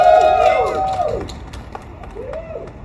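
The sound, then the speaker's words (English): A crowd at an outdoor action applauds the support crew, camera crew and live tweeters, scattered claps over a steady wash of noise, with a few rising and falling whoops and cheers cutting through near the start and again toward the end. “Come on, let's give them a round of applause.”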